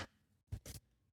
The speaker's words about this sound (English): I just realized my roommates must think I'm crazy because I just clap randomly throughout the night.